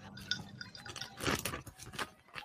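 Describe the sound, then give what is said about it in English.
Wet gulping and swallowing as someone chugs a sparkling water, with a run of squishy, liquid bursts and a louder gulp in the middle, no voices. “Can you chug a sparkling water and not burp?”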